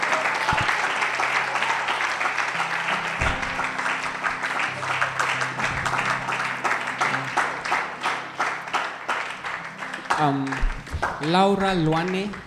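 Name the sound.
audience clapping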